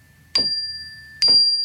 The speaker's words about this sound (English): And with this third chime